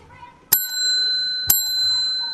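A bicycle bell dings twice, about a second apart, each strike bright with a metallic tone that rings on and fades slowly between hits. No one speaks.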